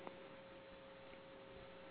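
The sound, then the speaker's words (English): A sharp tick near the start, then maybe a fainter one, over quiet, narrow telephone-line noise with a steady electrical hum underneath, on a live phone call. No one speaks. “I got a little couple of ticks on this phone line.”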